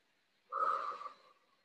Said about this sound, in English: You close your eyes, take a few deep breaths because breath is life, breath is powerful.